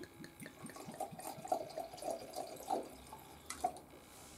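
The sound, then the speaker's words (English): About 3 ounces of deep golden wine is poured into a glass in a steady, gurgling stream with small splashy glugs, fairly quiet, with no talking over it. “Anyway, so cheers to you and let's go ahead and pour.”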